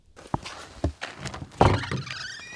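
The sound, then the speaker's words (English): The front door of a luthier's workshop, where old musical instruments are repaired, is opened, with a few sharp thunks and clatters of the latch and frame, then a louder knock followed by a faint creaking, with no talking. “Walk through the front door”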